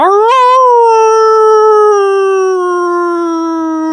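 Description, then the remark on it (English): A person imitates a wolf howl, one long sustained wavering note that rises quickly, then holds and slowly sinks in pitch, loud and close with no other talking. “how about the Eddie Wolf howl here? Anybody want to do take a crack at that?”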